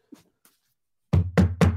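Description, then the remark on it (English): Three firm knuckle knocks on a semi-wood coffee table, fairly loud in a quick even rhythm, after a couple of faint light taps. No one speaks. “But that no, actually, that actually sounded like a refrigerator. No. It's my coffee table.”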